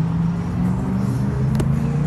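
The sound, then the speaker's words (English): Steady low rumble of road traffic fills the background, a constant engine drone with a brief sharp click partway through, no voices. “I don't think anybody heard that because there's so much traffic.”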